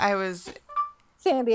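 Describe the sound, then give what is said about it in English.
A short electronic chime from a phone's voice assistant sounds between brief bursts of a voice saying "How can I help?", a single thin tone that is moderately loud. “My phone said, "How can I help?"”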